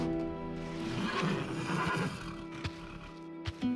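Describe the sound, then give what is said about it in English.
A horse whinnies loudly in stables, a long wavering neigh with strong harmonic tones, followed by a few soft thumps like hooves shifting on the floor. “Tonight, Rosa and I had gone to the stables and walked hand in hand among the finest horses I had ever seen, making plans for our future together.”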